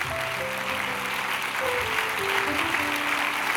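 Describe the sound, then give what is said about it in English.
A church crowd claps their hands unto the Lord before being seated, in a dense, continuous wash of applause, with a few held musical tones sounding faintly underneath. “Clap your hands unto the Lord before you're seated.”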